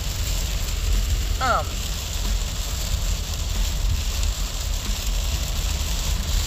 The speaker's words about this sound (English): So, this rain be rainy, huh?